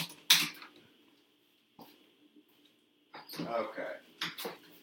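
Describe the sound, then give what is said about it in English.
A male dog's nails click and scrabble around inside a cage as he tries to get out, with a sharp scrape early on, a lone tap, then a busier burst of shuffling clicks over a faint steady hum. “Yeah, it's one thing to hear his little nails clicking around in the cage.”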